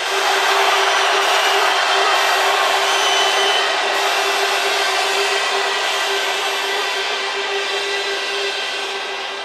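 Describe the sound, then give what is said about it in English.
A crowd screams and roars on a count of three to back Eskimo Dance to win the round, one loud, sustained wall of noise for about nine seconds, holding steady before easing off slightly at the end, with no individual voices standing out. “If you want Eskimo Dance to win this round, on the count of three, scream, one, two, three.”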